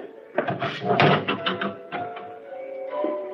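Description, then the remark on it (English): A door is handled, rattling and clattering in a quick burst of knocks and scrapes, then settling into a low steady hum. “I'd rather you leave the door open, if you will.”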